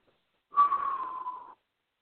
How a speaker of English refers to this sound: Was that you whistling like, wow? Yes, I am. Yes, I am. I am whistling in amazement.